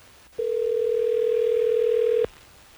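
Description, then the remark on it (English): A loud, steady telephone tone drones for about two seconds as hosts of radio station Hot 101.5 place a call to a listener, a single unbroken hum that starts and stops abruptly, with no voices around it. “So, well, let's get Hallie on the phone.”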